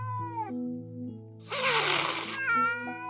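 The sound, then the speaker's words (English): A kitten lets out a sharp, breathy hiss lasting about a second, framed by drawn-out tonal yowls before and after, all fairly loud with no talking. “When they're scared or angry, kittens hiss, puff out their fur, and arch their backs to make themselves look bigger and scarier.”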